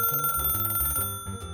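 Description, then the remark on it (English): An ancient rotary telephone bell rings in a rapid metallic trill, loud, then cuts off abruptly with a brief clattering tail of fading resonance. “It's coming out of this ancient rotary phone.”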